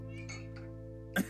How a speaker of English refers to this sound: Your cat just said, okay. Oh, your cat's horny.